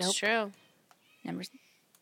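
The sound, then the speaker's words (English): A cat meows loudly, a long drawn-out wail followed after a short pause by a second, shorter meow, with brief faint clicks in between. “They really hate Holly. They're not a Holly fan. The cats.”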